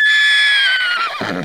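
A horse pulling a wagon, startled by a man jumping into the road, lets out a single loud, high-pitched whinny that slides downward and breaks into a rough, quavering neigh at the end, with no one talking.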